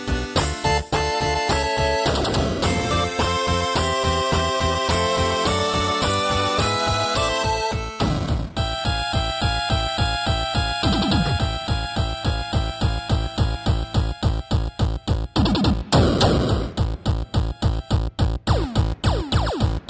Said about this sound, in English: 8-bit music.